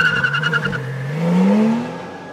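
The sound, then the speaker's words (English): An unmarked van's engine revs up and accelerates as it speeds away with men in black and a Polybius arcade cabinet loaded inside, its pitch rising steadily, loud with a brief tire squeal early on. “In an instant, the bulky machine disappears into the van along with the men in black, and the unmarked transport speeds away.”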